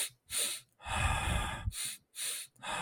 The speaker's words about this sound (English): Right, when they're running, sometimes they do the double inhale and double exhale as well.